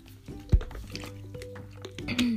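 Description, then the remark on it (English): Someone takes a quick drink of water: wet, squishy liquid sounds, a soft thud, and a faint swallow over a couple of seconds, with no talking. “So, also, hold up, I need water.”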